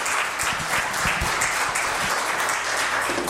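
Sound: audience applauding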